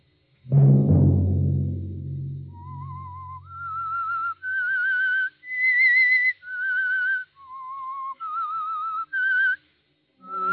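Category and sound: sound effect, eerie whistled theme tune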